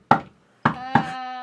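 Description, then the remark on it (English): Three knocks on a quaint little bedroom door at the top of a staircase: one solid rap, a pause, then two quicker ones, the last followed by a sustained ringing tone. No voices. “And so, Penny made her way up the quaint staircase and knocked on the quaint little bedroom door.”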